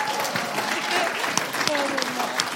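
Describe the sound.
An audience claps steadily for a couple of seconds, a dense, even patter of many hands, while a few voices murmur faintly underneath.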